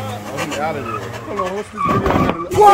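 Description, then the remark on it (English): Tires squeal in wavering, high-pitched tones as a car skids, then a rough, noisy crunch as it sideswipes another car lands near the end, all loud with shouting voices mixed in. “He just sideswiped a car.”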